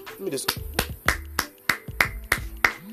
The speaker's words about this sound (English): So Raptors fans, let me give y'all a round of applause.